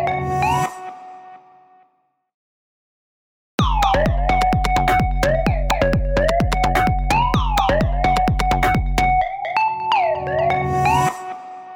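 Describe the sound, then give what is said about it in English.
A loud electronic alarm siren, the All Stars 1 lip sync alarm, wails in repeated rising sweeps over a steady pulsing beat, after a brief tone and a moment of silence, then fades out at the end. “hit the All Stars 1 lip sync alarm and ousted me from the main stage to tackle a very special interview with Shea Coulee coming right up.”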